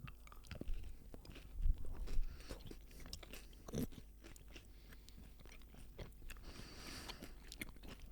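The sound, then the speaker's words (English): Someone chews a Boost chocolate bar, with crunchy bites and soft, irregular mastication sounds, a few louder crunches standing out near the start and middle, no talking. “Boost used to be like my favorite chocolate.”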